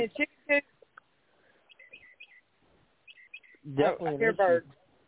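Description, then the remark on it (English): Faint, high bird chirps come in short clusters from many birds in a tree outside, partly drowned out by louder voice-like bursts near the start and end. “Oh, I'm standing outside. I got the tree. The tree's loaded with birds.”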